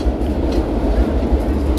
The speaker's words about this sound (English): Oh, the train coming.